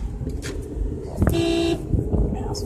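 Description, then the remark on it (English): A single car horn blares for about half a second in traffic in Arizona amid the low rumble of road noise, heard from inside a moving car, with faint voices around it. “I'm in the car. These people in Arizona don't know how to drive.”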